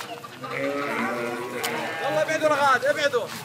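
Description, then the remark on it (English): Several sheep bleat in an enclosure covered by a corrugated iron roof, their wavering, overlapping cries running almost continuously and growing louder and more insistent toward the end. “Outside, a corrugated iron roof covers the enclosure for his sheep and provides some shade.”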